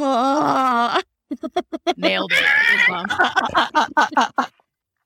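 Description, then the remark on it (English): A person lets out a shrill, warbling screech mimicking a pterodactyl, broken up by rapid bursts of laughter and a cut-off spoken word. “Please pause for the human pterodactyl screeching.”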